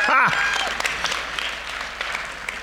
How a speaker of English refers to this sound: Psalm 47 says this, clap your hands. Some person got it, just one, now two. Clap your hands, all you nations.